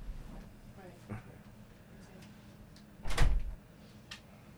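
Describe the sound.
A door is slammed shut once with a loud, heavy thud partway through, rising sharply above quiet surroundings where faint voices murmur in the background, while cameras and microphones are recording.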